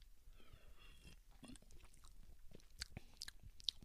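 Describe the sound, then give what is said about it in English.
Quiet sipping from a can of Pepsi: a short slurp followed by wet mouth clicks and swallowing noises, with no one talking. “I'm gonna take like one more sip of this, and then I think I'm done.”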